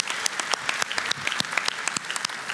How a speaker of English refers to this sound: Yeah, let's clap for them. And they're watching right now, so let's clap for them.